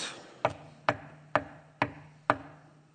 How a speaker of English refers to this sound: knocked, but the door didn't open. But that San Francisco Chronicle reporter wasn't about to give up so easily, so he kept knocking and knocking and knocking until finally the door opened ever so slightly